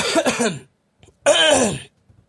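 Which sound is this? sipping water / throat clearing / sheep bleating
throat clearing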